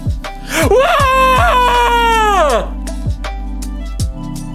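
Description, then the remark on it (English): A YouTuber's loud, drawn-out yell lasts about two seconds, its strained pitch climbing then sliding down, over a steady thumping beat and low hum that continue after it stops. “But you have to have that stupid fucking yell.”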